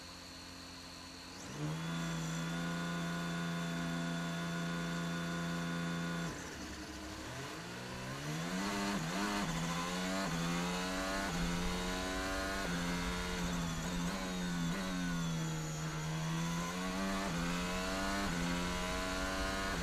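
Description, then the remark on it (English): The last race car's engine rumbles at a steady idle as it approaches the starting grid, then revs and surges through rising and falling pitch sweeps as the car moves, loud and continuous with no talking. “Last car's now approaching the grid.”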